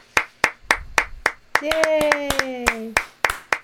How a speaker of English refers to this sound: Yay. Except I've realised that when there's two of us applauding, it so sounds sinister. It's like, yeah.